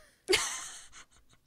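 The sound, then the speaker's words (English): One sudden, forceful sneeze bursts out of near silence, its loud breathy blast holding for about half a second before trailing off into a few faint, sputtering puffs. “That was such an audible sneeze.”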